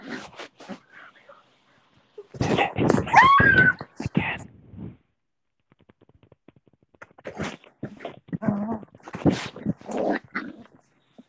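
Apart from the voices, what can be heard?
dog sniffing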